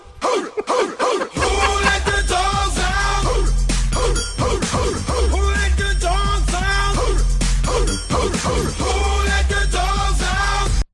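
A loud, driving American pop hit chorus with heavy bass and chanted group vocals, punctuated by rhythmic bursts of voices imitating a dog's woofing, playing continuously throughout.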